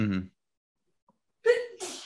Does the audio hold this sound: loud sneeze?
yes